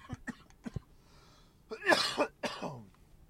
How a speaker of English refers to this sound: You are listening to the Roman the World podcast, and I apologize if I fucking like cough right in your damn ear.